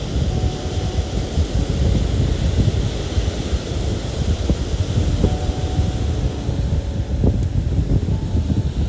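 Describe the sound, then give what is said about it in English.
A steady, heavy roar of wind and rolling surf, dense and low-pitched, with occasional faint knocks and clicks breaking through. No voices are heard. “What grand messages could the song of the ocean sing to us?”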